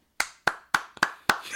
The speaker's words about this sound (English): They may have seen the light. I'm clapping.